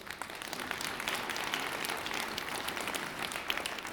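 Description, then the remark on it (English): An audience claps steadily, a dense crackle of many hands that stays fairly even and moderately loud for several seconds, with no voices standing out. “Cue for you to clap.”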